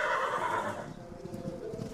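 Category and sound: animal, horse neighing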